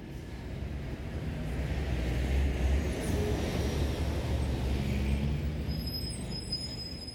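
A small car drives along with a steady, rumbling engine and road noise for several seconds at an even level, with no voices.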